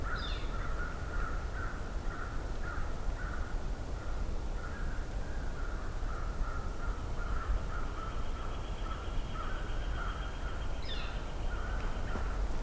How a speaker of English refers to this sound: We got two flickers and an American crow, or several American crows actually.